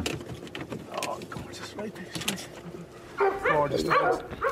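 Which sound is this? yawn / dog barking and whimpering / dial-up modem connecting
dog barking and whimpering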